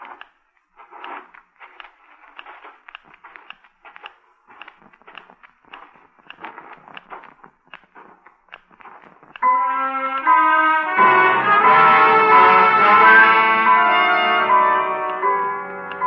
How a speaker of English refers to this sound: It's quiet except for the ticking of my Geiger counter.